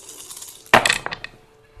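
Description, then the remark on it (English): Dice are rolled for force damage in a tabletop role-playing game, clattering onto a hard surface in a quick burst of bright clicks, a loud tumble that settles into a few lighter rattles before stopping. “So go ahead and roll your force damage, see if you shatter your lance or not.”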